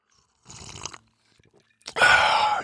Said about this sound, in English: So, hey, you guys, I'm just going to get a sip here.